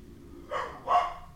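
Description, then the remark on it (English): A boxer dog barks twice in quick succession in the background, two moderately loud woofs, with a faint low hum underneath and no talking. “Almost the size of the boxer that's barking in the background.”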